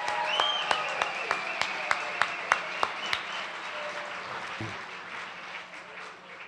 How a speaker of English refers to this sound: Let's have a big round of applause for all our storytellers.